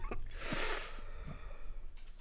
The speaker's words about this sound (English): Yeah, I'll let that cough linger in there because it's something about, like, my body didn't want to spit it out, so, like, my throat got choked up.